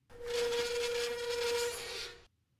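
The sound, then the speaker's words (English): The wheels of Jolly Trolley squeal to a halt: a steady, loud, whining screech over harsh scraping friction that holds for about two seconds and then cuts off abruptly. No one speaks. “Jolly's wheels squealed to a halt.”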